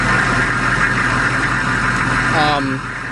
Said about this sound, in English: Is that the sound of drilling? It's a Humvee idling.